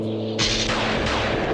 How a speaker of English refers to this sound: Unfortunately, after 3 days on the road, in the middle of an abandoned ghost town, the young couple's van got caught up in a squall that turned into an all-out thunderstorm.